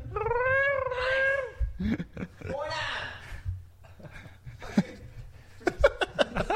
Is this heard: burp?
no